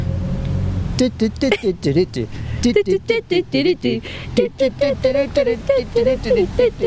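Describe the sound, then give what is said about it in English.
A single voice hums a lilting classical ballet melody in quick, clipped notes that rise and fall, over a low steady rumble like a car interior. “So it goes something like...”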